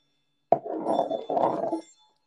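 A small Chinese glass toy ball with a panda on it gives a sharp click, then a warbling, mid-pitched rattly sound in two bursts lasting just over a second before stopping. No one speaks.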